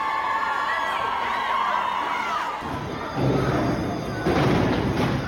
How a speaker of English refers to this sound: What you're hearing there is large-scale student protests. Kids in schools have been throwing bins off roofs, setting off fire alarms and spraying extinguishers